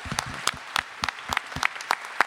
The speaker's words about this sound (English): She's right here. Well done. Stand up. We will clap for you.